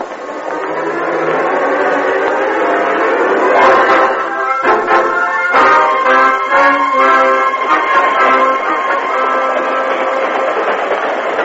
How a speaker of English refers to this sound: A short time later, as the train lessened its speed, the guard in the express car spoke to the Lone Ranger. We're going to stop to take on water at that tank up ahead. I wondered why the train was slowing.